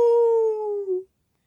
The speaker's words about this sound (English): And the old hound dog sang, "Woo! Woo!"